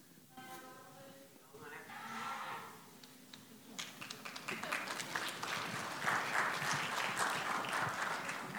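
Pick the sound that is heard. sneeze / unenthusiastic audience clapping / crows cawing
unenthusiastic audience clapping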